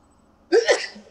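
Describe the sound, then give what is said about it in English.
After a quiet moment, a single sudden sneeze bursts out, a sharp, breathy explosion with a brief voiced edge, fairly loud, then fades quickly. “Bless you.”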